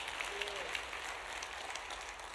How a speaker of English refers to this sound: Come on, give a clap offering of praise to our Lord God.